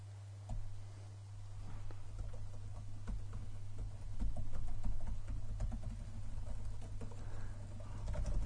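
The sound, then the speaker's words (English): Rapid, irregular clicking of computer keyboard keys being tapped, fairly quiet, over a steady low electrical hum, with no one speaking; the keyboard has stopped entering any text. “Can't type in anything.”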